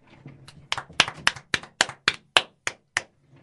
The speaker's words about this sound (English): Before we get into that, should we give him a standing ovation? Again? Yes.